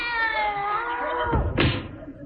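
A cat in a desk drawer gives a long, drawn-out meow that slides down in pitch at the end, followed by a dull thump, fairly loud with no talking.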